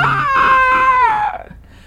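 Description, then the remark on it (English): A voice imitates a Noon Wraith's terrifying screech as it stares at someone: one loud, drawn-out wail that slides downward in pitch for about a second before trailing off into breathy quiet. “And lets out another terrifying screech.”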